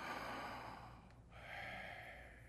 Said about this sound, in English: You say half of it breathing in and half of it breathing out.